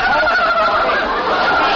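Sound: turkey gobbling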